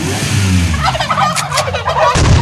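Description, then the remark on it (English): A turkey gobbles in a loud, rapid, warbling burst of throaty, bubbling calls lasting a couple of seconds, over a steady low rumble, with no talking. “You gotta add like gunshots after it, like the turkey has, I think you should add an actual turkey gobble and then gunshots.”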